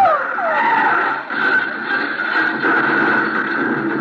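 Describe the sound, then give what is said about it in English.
A car's tires screech in a long, loud skid, the squealing pitch sliding at first and then holding steady for about four seconds, with no voices. “Leo, what's the matter with him, the way he's driving? Well, he's going to crash.”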